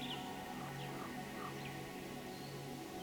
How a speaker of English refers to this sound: I hear birds singing songs.